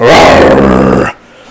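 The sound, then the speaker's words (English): A person growls loudly and gruffly in imitation of a dog, one sustained rough snarl lasting about a second, then cutting off to quiet. “I'm a dog.”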